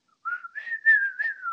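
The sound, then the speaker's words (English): A person whistles a smooth, flute-like melody imitating the flute part of a song, a sustained mid-high tone gliding between a few notes with slight breathy bursts, heard alone without talking. “It's a human flute.”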